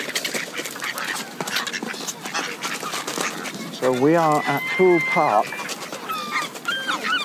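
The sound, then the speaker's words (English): Geese at a park pond, with many baby geese present, call out in a short burst of honking, loud harmonic cries over outdoor background noise, while a person briefly speaks before the calls. “And here are the baby geese, look, you can see them. Lots of baby geese.”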